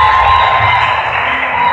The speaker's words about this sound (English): Hey, this is your shout and hand clap, boys.